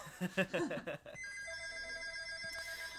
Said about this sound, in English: Phone call.